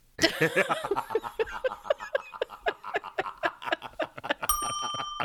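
A bright, sustained doorbell chime rings out near the end, following several seconds of rapid, sing-song electronic voice chatter from a talking pumpkin, fairly loud.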